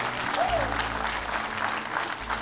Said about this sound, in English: Somebody give the Lord a clap offering one more time.